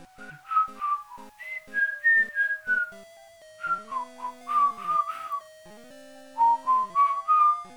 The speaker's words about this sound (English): Stop whistling too.